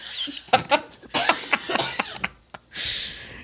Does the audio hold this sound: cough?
yes